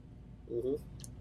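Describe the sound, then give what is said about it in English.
A short sip and swallow of Bold Rock Hard Tea Original, twist of lemon: a brief gulping sound lasting under half a second, followed by a few faint wet clicks from the mouth, over a low background hum. “And I'm gonna get a sip here real quick.”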